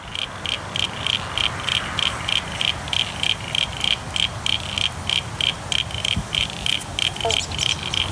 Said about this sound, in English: Do you reckon that that one's an easy one to identify? That's definitely Crinia signifera, and there was a pobble bonk in the background as well.